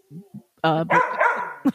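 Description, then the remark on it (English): A dog named Kingsley barks: two soft low woofs, then a loud sharp bark followed by a longer strained, whiny bark and a final short yip. “We can do our song right now while Kingsley is barking.”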